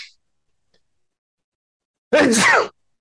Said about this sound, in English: And gosh, I'm going to sneeze here. Hold on.